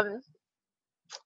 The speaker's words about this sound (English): Well, what's that? Let me clear my throat.